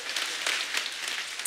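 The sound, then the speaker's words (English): A crowd breaks into steady, dense clapping, a bright rattling wash of many hands with no pauses, held at an even, moderate loudness throughout. “Come on, clap if you know what I'm talking about.”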